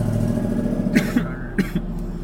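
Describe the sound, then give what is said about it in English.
A car starter struggles on a real cold start: a low, steady engine drone broken by two rough, sputtering bursts about half a second apart, with no talking. “I think my car has a problem with starting up now, too. That thing's your starter.”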